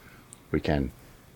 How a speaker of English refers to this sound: And everyone can listen to my cat try to get my attention in the meanwhile.